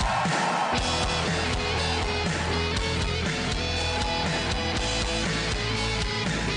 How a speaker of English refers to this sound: You know, that's such a good applause. I'm only going to betray that confidence in me.